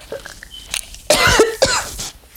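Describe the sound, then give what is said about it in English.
Two loud, harsh coughs, the second following about half a second after the first, preceded by a few faint breathy sounds. “That was not a cough.”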